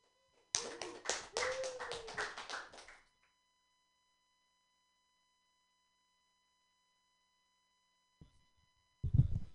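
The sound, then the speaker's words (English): A comedy show audience claps in a dense burst of applause for a couple of seconds as the next comedian comes to the stage, then it fades to silence before a brief low rumble of movement or voice near the end. “All right, give it up for your next comedian coming to the stage,”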